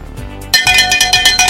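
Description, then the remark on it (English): A bell rings rapidly and loudly on the North Georgia Business Radio X show, a quick series of about seven bright, metallic strokes in a steady rhythm after a short quiet moment, with no voices. “We're ringing the bell this week”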